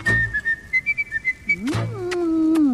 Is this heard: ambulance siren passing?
no